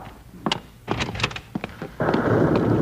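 A few dull, scattered knocks and thumps, then a sudden loud, broad rumble of thunder rolls in and holds steady to the end, with no voices.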